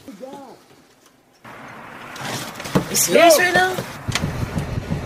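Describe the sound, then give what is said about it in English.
An Uber driver's car drives along a quiet residential street, its steady road and engine noise rising after a short lull while a neighbor chases it and people shout over it. “Chasing after a car driven by a black man.”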